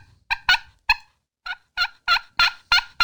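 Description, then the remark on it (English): About nine short, sharp turkey clucks, fairly loud, coming one after another in a loose rhythm with a brief pause near the start. No one speaks. “And just giving up, just a, you know. Couple few little clucks.”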